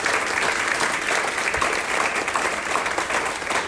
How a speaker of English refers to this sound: So, massive round of applause, please, for our panelists. They were awesome.